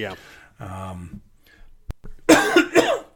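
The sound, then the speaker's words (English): A person coughs loudly twice after a few murmured vocal sounds and a sharp click. “I hit the cough button, but I didn't.”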